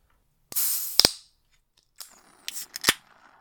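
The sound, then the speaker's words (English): A beer can is cracked open right next to a microphone with a sharp click followed by a bright airy hiss, then a second beer can pops with a few quick snaps and a shorter fizz. “Now there's two can opening sound spikes.”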